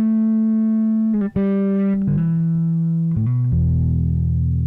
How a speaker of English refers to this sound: Really crunchy. I also love the more, like, it has an era knob, so you can do more of the, like, more current, crunchy, drivey stuff. Maybe it's more high.